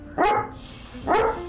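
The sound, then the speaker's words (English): A dog barks twice, loud, with about a second of quiet between the two sharp, harmonic barks. “Why are you barking?”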